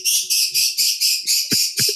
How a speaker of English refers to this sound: Yeah, that's the lovebird.